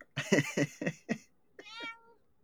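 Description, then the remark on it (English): A cat gives a clear, drawn-out meow after a quick run of four or five short, chirpy vocal bursts; no one talks. “Yeah, hello cat.”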